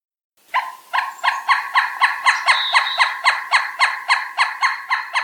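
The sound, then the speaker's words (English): A pileated woodpecker calls in a long, loud series of ringing, evenly spaced notes, about three per second, steady in pitch and sustained for several seconds with no talking. “Here's the common sound of a pileated woodpecker, which should sound familiar as it is the theme music for this program.”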